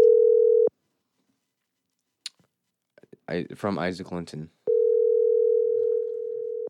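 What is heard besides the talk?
phone call ringing tone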